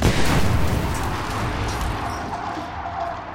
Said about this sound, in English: The hotel's head chambermaid, Elizabeth Wilson, entered room 217 with a lit candle to turn them on. She walked right into a room filled with leaked gas. The place exploded.